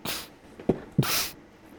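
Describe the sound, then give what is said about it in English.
A single fairly loud sneeze: a short catch of breath, then a sharp burst of breathy noise that quickly fades into quiet. No talking. “Sorry, I beg your pardon, I'm sneezing quite a bit today.”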